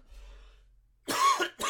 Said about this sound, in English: yes, asthmatic cough.